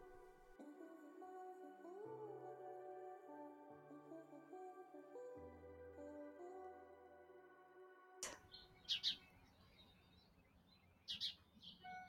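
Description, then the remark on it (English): Gentle music plays for several seconds, then cuts to an outdoor backyard ambience where birds chirp in a few short, bright bursts, moderately loud against a soft background hiss. “Do you have birds around you? I do. I'm in my backyard.”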